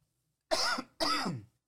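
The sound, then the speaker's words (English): Two rough, throaty coughs in quick succession, fairly loud, each a harsh burst that trails off, with the second following after a short pause. “Sorry, I've got the coughs right now.”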